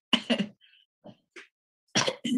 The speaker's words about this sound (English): I went to cover my mouth for that little cough choke thing I did with my sock still in my mouth. I mean, hanging.